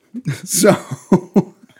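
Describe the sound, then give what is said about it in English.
A female dog sitting on a person's lap sniffs right against the microphone's pop filter in a few sharp, breathy bursts, loud, while a person chuckles softly underneath. “Sorry, the dog is on my lap and she's sniffing. Yeah, and she's sniffing the microphone. You can hear her.”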